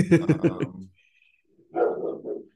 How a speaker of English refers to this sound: My dogs are gonna bark in a second. I can feel it.